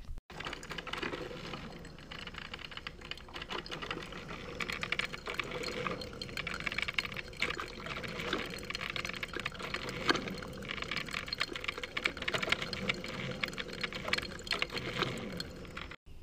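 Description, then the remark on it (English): A coffee maker brews steadily up close, a continuous hissing, bubbling churn with a faint mechanical rattle running at an even level throughout, with no one talking. “The sound of brewing coffee is also me thinking on how Darrell is back.”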